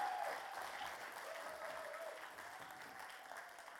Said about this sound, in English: Will you give them another round of applause? Can you give them a shout of praise?